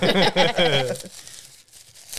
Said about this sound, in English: Don't mind me, I'm just opening bags here.